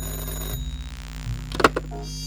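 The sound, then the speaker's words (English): A telephone rings in a short, bright metallic burst of bell-like jangling that fades quickly, over a steady low hum. No one speaks. “Hey, your phone's ringing.”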